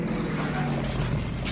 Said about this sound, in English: Still got that motorcycle in the back.